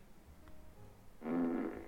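A single buzzy fart sound effect kicks in after a quiet stretch, a low vibrating blurt lasting under a second that fades out at the end, with no talking.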